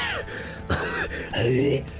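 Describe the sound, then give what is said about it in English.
A voice imitates a cat hacking up a hairball: three strained, throaty retching bursts in quick succession, fairly loud, with gagging gasps between them. “I mean, honestly, it's the longest you've gone without coughing up a hairball.”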